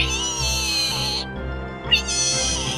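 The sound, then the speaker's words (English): A person imitates a dinosaur, the one that spits in your face, with a loud, shrill, drawn-out screech, broken by a short dip before a second sustained cry. It sounds almost like a yowling cat, with no other talk. “That's my dinosaur sound.”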